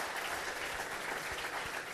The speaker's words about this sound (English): But can I just say, actually, I'm going to say round of applause first, because your book, We're On Our Way Back Last Season, has now officially sold out. So congratulations, author Tim Spears. Round of applause.